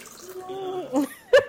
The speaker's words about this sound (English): pouring some water. No one's peeing.